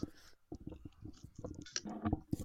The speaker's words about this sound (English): There was a fucking audible crunch of him biting into it. That's fucking amazing.